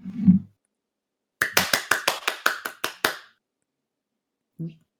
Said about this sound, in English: Insert applause track.